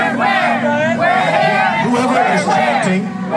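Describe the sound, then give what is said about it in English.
A large protest crowd chants the slogan "We're here, we're queer" in unison, many voices rising and falling together in a loud, steady rhythmic cadence that fills the scene. “Well, shortly after this clip, that crowd you're hearing chanting, "We're here, we're queer," they continued chanting.”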